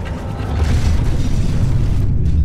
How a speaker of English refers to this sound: More than 60 tons of steel and concrete fell onto the dancers below, spraying bystanders with deadly glass shrapnel. The entire chain reaction took seconds.